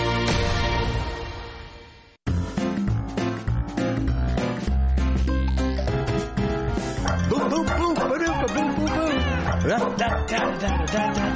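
Barking dogs and meowing cats ring out over an upbeat musical backing in the musical intro of Warren Eckstein's radio program The Pet Show, yelps and barks repeating rhythmically after a brief pause near the start, loud throughout.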